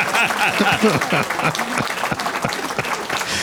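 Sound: applause sound effect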